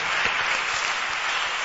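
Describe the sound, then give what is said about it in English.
A crowd applauds steadily for a group of people, as a sign of appreciating what Jesus has done, many hands clapping at once in a dense, even wash of sound with no single claps standing out and no voices. “I say clap for them, clap.”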